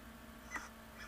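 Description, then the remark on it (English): An otter's chatter chip from a YouTube recording of otter vocalizations: a brief, sharp, bird-like chirp followed by a second softer chip, fairly faint over a low steady hum, with no talking. “Chatter chip.”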